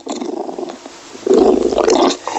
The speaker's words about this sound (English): That growl sounds worse than it is. That sounds like a mean growl. That's what they sound like all the time